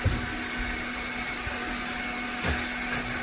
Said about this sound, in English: He's 4 feet away from where these guys are operating a wet saw.